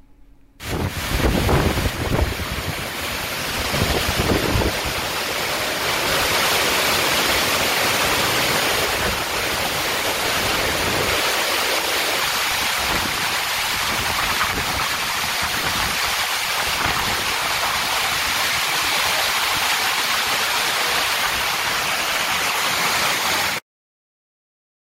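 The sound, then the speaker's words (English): A steady roar of a major downpour in Johnson City, rain driven sideways by strong wind, leaving the field unplayable with puddles, with gusts buffeting the microphone and low rumbling at the start, continuing loud and unbroken until it cuts off abruptly. “It was a major, major downpour. Rain was coming in sideways, and we went live immediately afterward and showed you the field and the puddles, and it was there was no doubt about it.”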